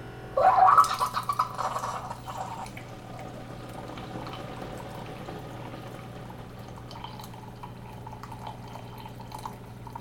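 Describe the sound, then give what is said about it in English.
A single-serve coffee maker brewing a K-Cup after its brew button is pressed: a short burst of gurgling and hissing, then a steady mechanical hum as liquid pours and drips. No talking. “So put the K-Cup in, press the door, and then I'm going to press the brew button.”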